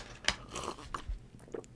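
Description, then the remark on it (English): Loud swallowing while a person takes a sip of a drink: a few wet gulps and mouth clicks in quick succession, with no one speaking. “You're just the loudest swallower.”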